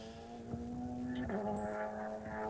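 TCR race cars' little 2-litre four-cylinder engines, about 330 horsepower, roar at full throttle in Portugal in a steady, buzzing drone with strong harmonics, their pitch dipping sharply once midway as if shifting gear, then holding loud and constant with no talking.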